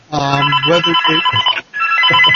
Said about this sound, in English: Someone's phone's ringing. It's not mine. Sorry, that was mine.